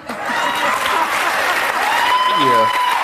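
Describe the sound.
A large studio audience applauds loudly and steadily for about three seconds, a dense wash of clapping, with a voice briefly rising over it near the end.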